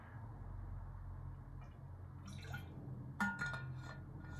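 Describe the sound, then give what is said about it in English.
Someone quietly sips water from a glass, with a few soft clinks and wet slurps near the end over a low, steady background hum. No one speaks. “I need a sip of water after that.”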